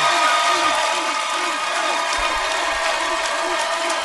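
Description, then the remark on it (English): A large crowd applauds steadily to vote on an applause-o-meter, a dense wash of clapping with some cheering mixed in, holding at an even, loud level throughout without a break. “Let's go to the applause-o-meter.”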